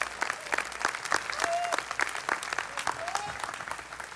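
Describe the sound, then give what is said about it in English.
Steady applause from a crowd in praise of God during a morning sermon, a dense patter of many hands clapping at once, with a few faint whoops and voices rising briefly above it. “I think he deserves an applause this morning.”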